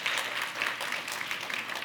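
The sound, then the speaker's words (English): A crowd claps steadily, a dense, even patter of many hands with no pauses, holding at a moderate level throughout. “Now you can clap for that if you want to, all right?”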